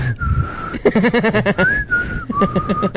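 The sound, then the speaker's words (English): A voice imitates the beeps of the Star Wars robot R2-D2: a steady high whistled tone, a burst of rapid warbling chirps, then a rising whistle sliding into another sustained tone with quick trills. “And then R2-D2 is the gay one. So beep.”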